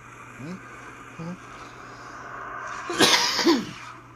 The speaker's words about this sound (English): Sorry I coughed for the people that have headphones on. You know what happens when you take a dab.